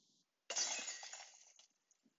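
A loud, sudden crash of a large amount of glass shattering on a hard floor, with bright tinkling shards scattering and settling over about a second before falling silent.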